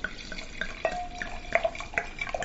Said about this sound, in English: This looks good already. Here we go. We just pour up our glass. Give it a little swirl and a sniff.